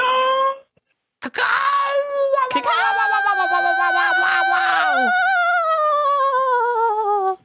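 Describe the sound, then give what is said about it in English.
A person loudly imitates a crow cawing into a phone microphone: one short harsh call, a brief gap, then a long, strained, wavering caw that stretches for several seconds with no other talk. “I wonder if the phone warranty covers loss of mic due to heavy cacawing.”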